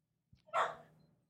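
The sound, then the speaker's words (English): A single sharp dog bark, fairly loud, rising quickly and trailing off over about a second against a quiet background. “The dog chimed in.”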